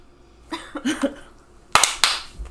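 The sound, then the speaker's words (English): After a brief murmur of voices, three sharp, bright hand claps ring out in quick succession, each a crisp loud snap with a short decay. “Are we gonna clap?”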